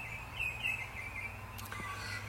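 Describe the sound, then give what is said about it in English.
Birds sing softly, with faint high chirps and short warbling notes repeating over a steady low outdoor hum. No one is talking. “I notice the birds sing every day.”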